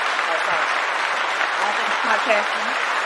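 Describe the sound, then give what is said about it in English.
A crowd claps steadily in a dense, continuous wash of applause, with a few faint voices and cheers mixed underneath throughout. “Girl, got it clapping, Jesus.”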